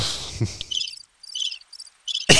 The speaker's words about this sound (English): Crickets.